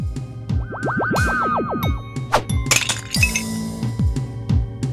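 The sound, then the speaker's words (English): A loud, dusty, rattling clatter as a bag of bones, a clown-dressed skeleton, is thrown against the wall of a room, hitting a shadowy shape and exploding into bones and dust: many sharp clinks and knocks over several seconds, springy warbling tones early on, no voices. “With a loud, dusty clatter, this bag of bones smashes against the wall of the room, colliding with one of the shadowy shapes to explode into bones and dust.”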